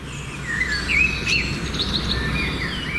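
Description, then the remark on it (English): Birds chirping and singing, with a mix of quick high tweets and short warbling phrases over a steady low background hum, continuous throughout. “Today is National Bird Day.”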